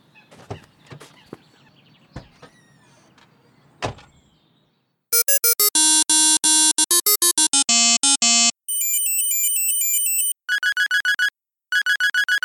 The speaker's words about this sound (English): I was trying to decide what ringtone would be most annoying to use on my new cell phone